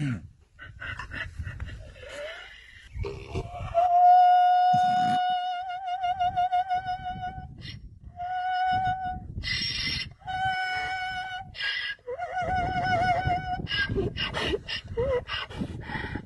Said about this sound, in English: What is that, really? That is a donkey. I told you. That is a donkey.